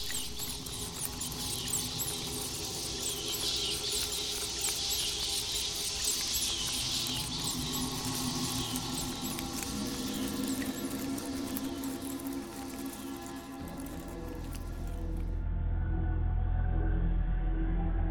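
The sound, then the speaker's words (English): Rats scurry and scrabble inside the walls, racing behind the room's padding, in a busy, continuous patter of tiny scratches and faint squeaks, with a low rumble swelling underneath toward the end, in an audio drama of H.P. Lovecraft's The Rats in the Walls. No one speaks. “The demon rats that race behind the padding in this room and beckon me down to greater horrors than I have ever known.”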